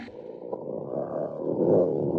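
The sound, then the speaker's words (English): A dog named Lucifer growls in a low, continuous rumble that swells steadily louder over about two seconds, deep and throaty with no voices over it. “Hold it, Lucifer. Yeah. Yeah, hold it, Lucifer. He won't hurt you, mister, unless I tell him to.”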